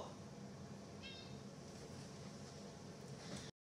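A single short, high-pitched cat meow, faint and brief, rising out of a steady wash of hissing background noise that runs throughout before cutting off abruptly.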